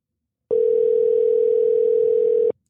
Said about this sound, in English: Okay, we're calling him. Ringing.